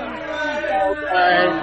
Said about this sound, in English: Gotta boo you, gotta give you these boos. Sorry.